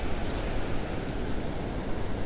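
Ocean waves wash around the shins of a person standing in the water in boots, in a steady, continuous wash with no distinct breaks, fairly loud and full, with a hint of wind noise and no talking.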